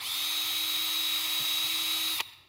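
A power drill whines at a steady high pitch for a little over two seconds, loud, then stops abruptly, leaving only a brief fading hiss. No one speaks.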